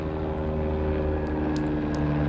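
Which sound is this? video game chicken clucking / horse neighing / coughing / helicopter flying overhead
helicopter flying overhead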